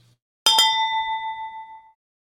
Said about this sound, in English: Nice. Wow, I kind of forgot what that correct bell sounded like.